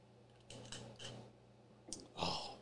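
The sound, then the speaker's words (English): A drink is poured out as a tribute in two short splashing bursts, the second louder and brighter, over a low steady background hum with no voices. “We gotta pour one out for the queen, man.”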